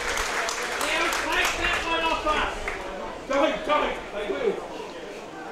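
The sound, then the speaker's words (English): A large stadium crowd murmurs and shifts restlessly, a steady wash of overlapping voices and scattered claps that swells briefly before easing back down, readjusting before an important kick for the Panthers. “Crowd just readjusting.”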